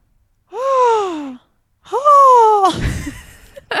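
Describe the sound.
A voice imitates a hawk's cry with two drawn-out, slightly falling screeches, the second louder. A breathy, noisy burst follows right after.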